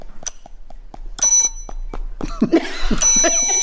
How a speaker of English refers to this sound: Is that a desk bell? There's a bell. Can you hit it repeatedly?